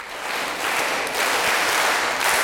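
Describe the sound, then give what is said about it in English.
A group claps together in a steady, dense burst of applause that holds at a fairly loud level for a couple of seconds, with no voices over it. “We are going to clap for her again.”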